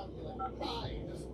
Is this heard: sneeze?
no